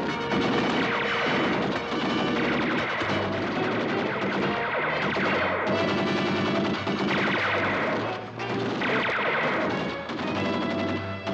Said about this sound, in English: Let's advance our bat shield through this deadly gunfire.